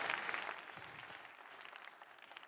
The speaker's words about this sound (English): Clap, clap, clap.